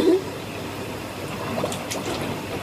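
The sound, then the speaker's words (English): Water splashing, a steady churning wash broken by a few sharper, brighter splashes near the end, with a brief faint voice at the start. “Stop splashing.”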